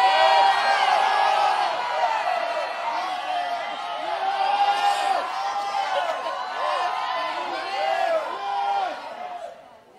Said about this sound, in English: There's something that's going to shift in your life when you scream yes, when you yell yes right now.